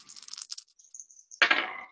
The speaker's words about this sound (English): I am rolling 4 dice. You are rolling 3.